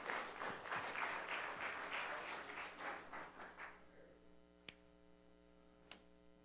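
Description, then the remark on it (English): A short burst of group applause, dense and steady for a few seconds before thinning out, with a constant electrical hum underneath and a couple of sharp clicks after the clapping stops. “Let's give all these guys a round of applause.”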